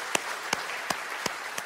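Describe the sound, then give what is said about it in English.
A crowd applauds in a cheer for the Derby campus, with five sharp, evenly spaced claps standing out above a steady wash of clapping noise; no distinct cheering voices come through. “Let's give a cheer for Derby campus.”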